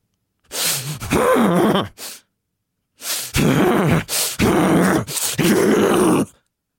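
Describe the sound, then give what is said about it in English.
A person makes a series of about five loud, forceful, deep huffing breaths, each harsh and throaty, almost like groans or grunts, with brief pauses between them and no talking: forced, stressful breathing meant to shock the body. “That kind of forced, deep, stressful breathing that shocks the body is a guff huff.”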